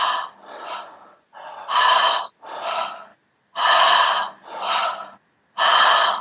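Slow, deep breaths through a mouth opened at least two fingers wide, one hand on the lower belly, which rises with each audible inhale. Each is followed by a soft, completely relaxed, unforced airy exhale, clear with no talking, repeating in a steady rhythm.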